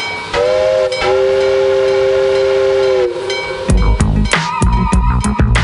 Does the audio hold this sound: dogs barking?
no